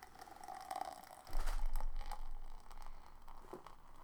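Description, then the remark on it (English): Beer, Daydream Layers by Other Half, a hazy New England–style Citra Galaxy Amarillo India Pale Ale Cream, is poured steadily into a glass, a bubbling, fizzy gush that swells after a second and then trickles on more quietly. No one speaks. “I'm happy you poured head.”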